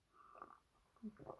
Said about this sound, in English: And again, for housekeeping, if I momentarily pause, I'm just getting a sip of water.